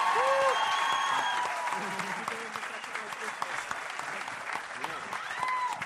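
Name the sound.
audience applause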